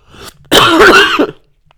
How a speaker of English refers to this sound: Excuse me, I got a cough.